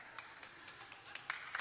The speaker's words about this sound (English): You can clap for that. That's good stuff, man.